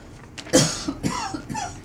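Someone coughs several times in quick succession, a harsh, close-up burst followed by a couple of smaller coughs and a throaty rasp, with no talking.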